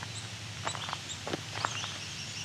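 A red-eyed vireo sings a few short, separated whistled phrases, fairly quiet against a steady low outdoor rumble, with no voices present.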